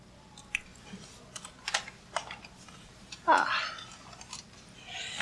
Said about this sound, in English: Hello, computer. Just use the keyboard.